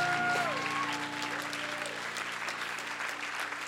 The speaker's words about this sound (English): Put your hands together for them as they go back to their seats. Clap for them.